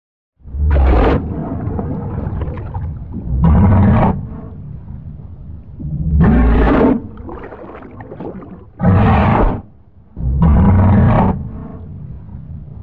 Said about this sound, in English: So what I did was I grabbed some walrus sounds from online, and again, pitched them down and played around with them and added that Moria reverb. So let's listen to those as they normally are with no alterations. Let's listen to that pitch down.